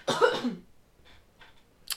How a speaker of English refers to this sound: I'm gonna try and cough away from the microphone so that you don't get your eardrums blown out. But I can't, you know, I can't promise anything.